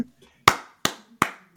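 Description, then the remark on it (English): Four sharp hand claps in a steady, unhurried rhythm, loud, each with a quick decay, preceded by a soft murmur of voice at the start. “I clap at that, sir. I clap at that.”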